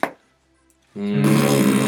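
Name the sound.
people humming together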